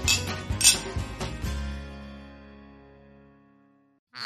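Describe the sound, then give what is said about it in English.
Glasses clink together several times in quick succession in a toast, bright, then a clear ringing tone lingers and slowly fades out. No one speaks. “Well, I think it's a cheers to that. Let's. Cheers.”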